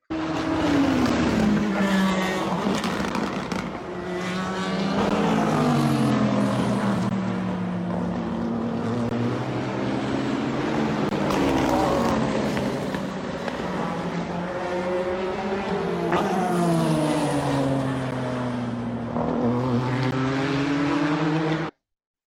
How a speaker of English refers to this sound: That was some more beautiful race car noises, which we very much missed,